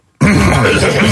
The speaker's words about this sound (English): You coughing into a garbage pail, too?